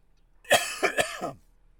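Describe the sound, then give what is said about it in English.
A short burst of three quick coughs in rapid succession from a tickle in the throat, fairly loud and raspy, with a throaty edge and no talking around them. “My cough is unrelated. And I think I just got this weird tickle in my throat.”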